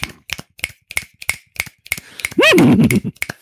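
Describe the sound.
A voice imitates a horse: a steady run of sharp tongue clicks mimicking clip-clopping hooves, then a brief warbling whinny that swoops up and down in pitch before the clicks resume.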